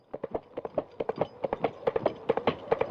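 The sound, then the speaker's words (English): Two empty, hollow coconut halves knocked together in a quick, steady clip-clop, imitating a horse's hooves trotting. The knocks are crisp and evenly paced throughout, with no talking over them. “You've got two empty halves of coconut, and you're banging them together.”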